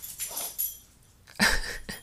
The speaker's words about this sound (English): My dog just fell, like getting out of his bed, which is already on the floor.